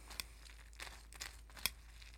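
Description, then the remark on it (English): Crunching on a mouthful of cereal: a handful of short, crisp crackly bursts at an uneven pace, fairly soft, with no one speaking. “I had to make a bowl. I'm so sorry. I'll try my best not to let it crunch too loud.”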